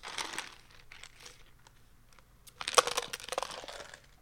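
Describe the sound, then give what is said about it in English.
Ice cubes swished around in a glass, a soft crackling rattle at first, then a louder cluster of bright clinks and one ringing tap before it settles into scattered rattles. “Every time you swish those ice cubes around, it's going to get included in the end, you know.”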